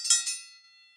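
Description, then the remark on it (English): Two quick bright strikes of the show's 'Kenny Bell' sound effect ring out with high metallic overtones, then a shimmering tone lingers and fades over about a second, with no voices present. “Kenny, thanks for the bell.”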